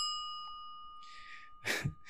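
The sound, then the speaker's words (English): A single bright bell ding marking the end of a segment rings out and sustains with a long, steady shimmer, while a soft breathy exhale and a short sigh follow near the end. No one speaks. “That bell tells us that that's all the unpacking we have for this episode.”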